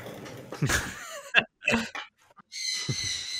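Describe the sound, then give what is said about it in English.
A bird gives a few short, high-pitched chirps, spaced irregularly, amid bursts of rough, breathy noise, before a steady hiss fills the final second. “No, that's a bird.”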